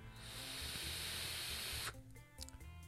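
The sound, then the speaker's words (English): A vape coil on a Recurve 2 rebuildable dripping atomizer (RDA) hisses loudly and steadily for about two seconds as someone draws on it, then cuts off abruptly, leaving quiet background sounds and a few faint clicks. “And this is my first vape experience with the Recurve 2 RDA.”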